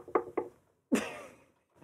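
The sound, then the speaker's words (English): Two quick, light knocks on a wooden surface, followed a moment later by a louder, fuller thump that rings out briefly, with no talking. “Knock on wood, though.”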